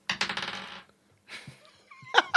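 Dice clatter across a hard tabletop in a quick run of bouncing, fading clicks, then a second, softer tumble follows, ending with a bright, sharp knock. No voices.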